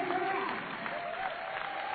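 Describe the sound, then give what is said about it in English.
A Canberra crowd in a stadium gives a standing ovation for Carrie Graff's 300th game as she is presented with the game ball: dense, steady clapping and cheering that holds at an even, fairly loud level for the whole stretch, with a faint voice threading through underneath. “And a bit of a standing ovation from this Canberra crowd.”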